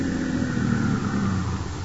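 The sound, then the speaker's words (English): A car engine runs steadily, a low mechanical hum with a rumbling undertone that eases off slightly toward the end as the car pulls up and stops in front of a house. “But then the time came, and he was pulling his car up in front of the house where he was to meet the man with a foreign accent.”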